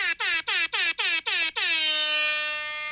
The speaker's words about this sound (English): Get used to that, because I'm going to do that a lot. Well, not really. I think this is the last time I'm using that air horn.